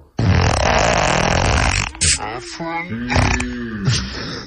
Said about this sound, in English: What a fart, my God. Unbelievable. At regular speed, it sounds impressive. Unbelievable. Very, but in slow-mo, it's amazing.